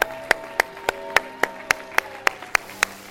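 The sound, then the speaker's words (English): An audience claps hands to the Lord, about eleven sharp, crisp claps at a steady, quick beat over a faint background hum, with no talking. “I want you to shout yes and clap your hands today to the Lord as a witness to the promise of God.”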